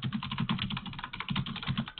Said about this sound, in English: Boy, somebody's really beating it. That's good. Did you just kill that keyboard? Yes, and it just went to heaven.